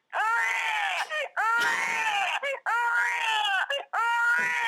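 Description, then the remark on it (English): A voice imitates a wailing baby, with four long, high, strained cries, each bending up then falling, separated by short gasping breaths. Loud and alone, with no talking over it. “I hear you can do an incredible impression of a crying baby.”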